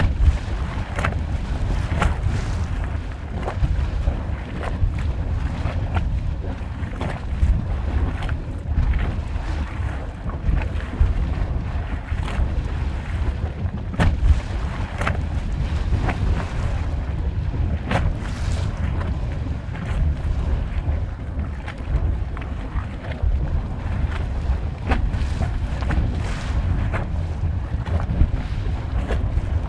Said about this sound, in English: We leave you this week with a soundscape titled Voice from Below. Jonathan Storm got up close to record the big sounds of a small geyser in Yellowstone National Park.